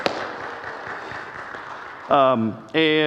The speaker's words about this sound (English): And yes, you can clap for them. They're great.